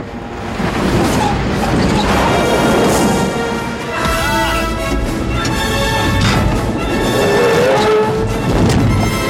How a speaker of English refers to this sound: Another Nazi car rams the truck.